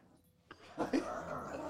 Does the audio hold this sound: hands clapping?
no